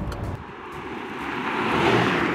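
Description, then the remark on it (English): An electric exotic sports car of almost 2,000 horsepower is floored and its motors wind up as it accelerates, a smooth whirring whine swelling steadily louder over a couple of seconds, with road and wind rush building underneath. No one speaks. “You can hear the motors winding up.”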